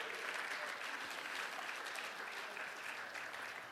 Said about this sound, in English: Can somebody say amen? Can somebody give him a hand clap of praise this morning?